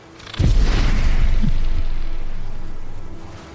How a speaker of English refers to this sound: As your chest kind of tightens up, you feel the mournful song that it sings out, and it lets out this blast of energy.